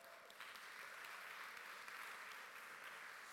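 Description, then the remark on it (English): A crowd in Brockley claps steadily, a dense, even wash of many hands at moderate volume that holds without pause for a few seconds, with no voices over it. “If you could give these guys a round of applause.”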